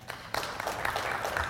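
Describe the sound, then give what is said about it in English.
An audience claps in answer to being asked who has ever had fear of success, a dense wash of many hands clapping that starts abruptly and stays steady and fairly loud, with no voices over it. “Clap if you've ever had fear of success.”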